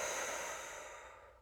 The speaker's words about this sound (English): And as we exhale together, we're going to exhale through the mouth, imagining that we want to fog up a window or a mirror. So let's take one breath together just to synchronize. Breathing in and breathing out.